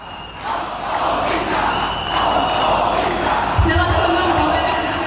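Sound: protest crowd chanting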